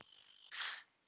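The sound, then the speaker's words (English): A steady, thin electrical buzz from an audio mixer hums alone at a high pitch, then briefly swells into a louder, harsher hiss before fading back down. “Yeah, that buzzing sound's coming from off my mixer for some odd reason.”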